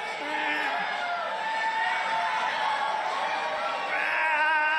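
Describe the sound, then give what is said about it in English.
A large rally crowd cheers and whoops without pause as Trump mimes straining to lift weights during a speech, many voices overlapping into a loud, steady roar with high shouts rising above it and swelling slightly toward the end. “And this really, really, really titillated the crowd.”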